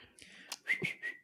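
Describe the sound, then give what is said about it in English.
A pet bird whistles a few short, high-pitched notes in quick succession, rising chirpy bursts that sound fairly loud against otherwise quiet surroundings, with no one speaking. “I'll let my bird talk it.”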